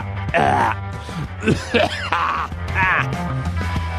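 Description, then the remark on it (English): A man clears his throat several times in a row, with rough, gravelly rasps and a few low grunts, fairly loud, with no words spoken. “Let me clear my throat.”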